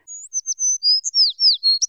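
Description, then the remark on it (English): A small bird, Little Bird in a story, tweets in a quick run of high, thin chirps and short whistled notes, clear, with no other sounds around it. “Little Bird tweeted out aloud, "Yes!”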